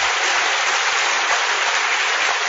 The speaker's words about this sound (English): Let's give the speakers a big round of applause.